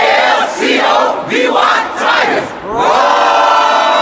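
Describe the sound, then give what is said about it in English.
A large crowd of students of Alcovy High School, the Tigers, shouts the chant "A-L-C-O-V-Y Tigers" in loud, rhythmic bursts, then breaks into a sustained, full-throated roar that holds steady to the end. “And I want y'all to hear them roar after they give you this chant.”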